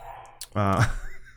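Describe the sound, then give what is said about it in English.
A single sneeze in the background: a quick sharp intake followed by a loud, voiced burst that fades out, with no talking. “Sneezing back there?”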